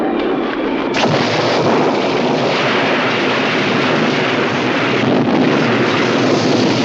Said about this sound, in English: So on the third, we are talking about Jeff Lieberman's Squirm from 1976, about killer worms. It was a violent summer storm.